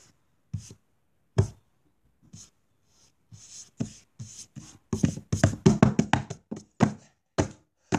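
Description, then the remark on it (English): Feet bang out a series of dull thumps, a few scattered knocks at first, then a quick, irregular flurry of heavy hits toward the end. No one speaks. “Well, yeah, that thumping at the end was just him banging his feet.”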